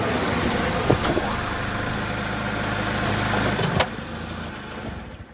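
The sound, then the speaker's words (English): A car pulls over and stops, its engine idling steadily, a continuous low rumble with a broad hiss, broken by two brief mechanical clicks or thumps before it settles and fades slightly. “Pull over here. Pull over. Stop here.”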